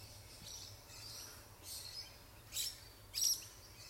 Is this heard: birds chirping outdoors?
yes